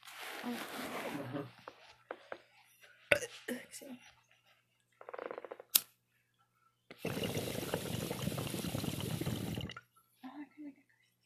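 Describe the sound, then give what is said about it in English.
Fizzing bubbles from a drink, heard as a steady hiss lasting a few seconds, with scattered clicks, taps and short rustling bursts before it and breathy vocal sounds now and then. “I hope you can see the bubbles, like, on the screen.”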